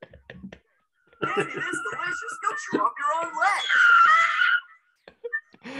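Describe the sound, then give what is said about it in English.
A loud, cartoonish scream from a cartoon bear caught in a bear trap bursts out after a brief pause, wavering and climbing in pitch for about three seconds before cutting off, with short snatches of voice before and after. “I'm glad that the audio got stifled because that is ear-shattering scream the bear lets up. So that's a bear trap.”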